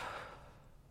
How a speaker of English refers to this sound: He takes those stones and shuffles them in his hands and he casts them. And right away, everyone gasps.